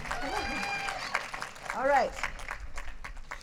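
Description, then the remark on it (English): An audience at a slam event applauds steadily with dense, crackling clapping throughout, while a few voices whoop and cheer over it, one rising and falling yell standing out midway. “Round of applause for her lovely bucket bird.”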